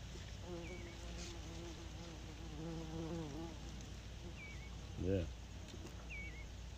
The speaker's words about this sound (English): big bumblebee hanging out right next to me. Do not bite me.